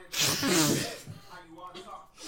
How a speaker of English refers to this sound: Cough, sneeze. Sneeze.